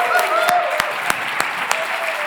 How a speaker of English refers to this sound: I think we need a round of applause for Rana